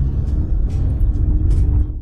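An old green and blue panel van from the late 1960s or 1970s, just started, its engine rumbling steadily in a loud, low idling drone with a few brief rattling bursts over the top and no voices.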